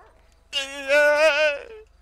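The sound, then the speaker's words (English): A dog lets out one loud, drawn-out bark that trails off into a brief higher whine; no one speaks, and a low steady hum runs underneath. “Don't hurt my dog, sir.”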